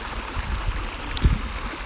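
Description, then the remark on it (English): Water burbles and rushes steadily over a brief stretch, a small babbling brook flowing over stones, with a few soft low thumps and one brief louder splash partway through; no one speaks. “Okay, anyway, there's no real point to me sitting here and talking besides the fact that I just want to sit by a brook and yak and not have a heart attack.”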